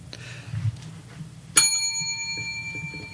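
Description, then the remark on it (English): A single bright bell strike rings out sharply, its clear metallic tone sustaining and slowly fading over a low, quiet background hum. “That deserves a bell ring.”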